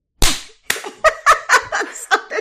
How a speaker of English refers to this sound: So bad. There's only two of us. For some reason, the clapping's not working.